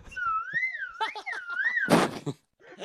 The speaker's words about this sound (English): Was that a recorder? It was a slide whistle.